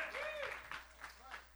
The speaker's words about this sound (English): Somebody shout hallelujah. I need you to clap your hands like you're alive in the house, because you're going to see evidence this year.